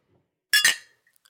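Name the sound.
glasses clinking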